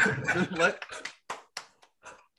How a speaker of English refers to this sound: Clapping for you.